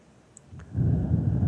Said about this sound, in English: And take a few deep breaths through your nose. Breathing in.